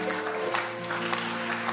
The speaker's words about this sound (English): Are you clapping now? You're doing something like clapping.